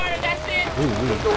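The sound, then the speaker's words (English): A steady hiss of rain falling outdoors in Oakland fills the whole moment, with a person's voice murmuring faintly over the wet patter. “It's nice and raining, and we're out here getting wet, you know, in the name of serving the community.”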